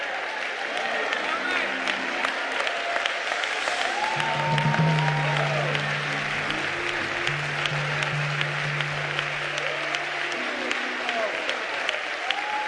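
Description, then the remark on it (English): An audience claps their hands for the Lord after a sermon in a dense, steady roar of applause lasting the whole time, with scattered voices and a low sustained tone rising faintly beneath the clapping. “Come on, let's get a Lord a hand clap.”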